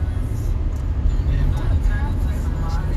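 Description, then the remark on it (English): Steady low road and engine rumble fills the cabin of a moving car on the way to a New Year's Eve party, constant and fairly loud, with faint murmuring voices of the passengers drifting in and out beneath it. “None of y'all in this car with me have a resolution.”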